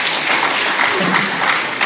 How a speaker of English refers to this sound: Thank you. I noticed that the applause wasn't quite so loud for the Papua New Guinea government.